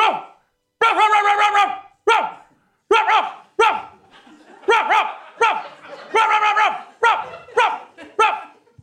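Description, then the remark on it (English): A person imitates a dog with a run of loud vocal barks and yelps, delivered in quick bursts with short pauses between them, no other sounds around. “Spencer Schrab and I are going to evaluate your bark.”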